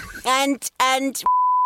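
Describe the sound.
Two short bursts of voiced sound are followed by a loud, steady, pure censor bleep tone that switches on abruptly and holds unbroken through the end.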